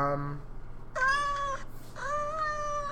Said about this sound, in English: Fucking moaning? No, it's a meow.